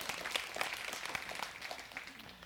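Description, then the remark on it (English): An audience at a morning worship service claps in a steady, dense patter of many hands, a crisp crackle of overlapping claps held at an even, moderate level for a couple of seconds without any voices. “and it's also good to see that I hear a half a clap, so we'll go ahead and there we go.”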